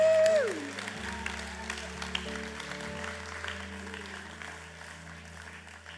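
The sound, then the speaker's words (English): An audience claps steadily for several seconds for a man, opening with a loud cheering whoop. Sustained musical tones hum underneath the spread-out, moderately loud applause. “Let's give him a clap.”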